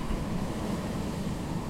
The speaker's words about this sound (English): power of the moon in a rhythm which we believe is unfailing and almost affirming that the world is as it should be, with the waves returning and again and the tides returning to the shore.